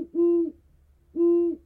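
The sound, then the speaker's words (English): A great horned owl hoots twice, each call a deep, steady, low-pitched note about half a second long, separated by a short pause, clear with no voices. “But perhaps the greatest enemy and rival of the red-tailed hawk is the great horned owl.”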